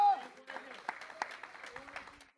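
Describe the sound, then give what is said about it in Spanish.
An audience breaks into steady, dense applause for the Lord, many hands clapping at once in a busy, sustained patter, with voices calling out and talking over it. “De repente dice, dale un aplauso al Señor.”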